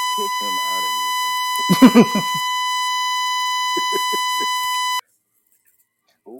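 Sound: phone emergency alert tone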